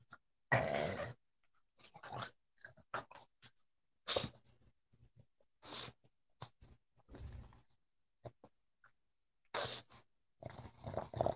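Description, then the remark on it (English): A dog growls and huffs in short, playful bursts while playing, with brief pauses between each rough grumble and snort. “This dog's too tired. That's why he lays down all the time.”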